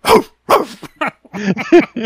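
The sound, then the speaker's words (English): A person imitates a dog barking, giving a quick series of loud, voiced woofs in an uneven rhythm, with short gaps between the first few and a tighter run at the end. “You got to do the bark.”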